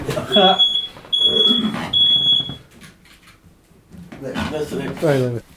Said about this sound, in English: Oh, that's the Ron Dennis alarm going off again. Hang on, I have to go and turn that off.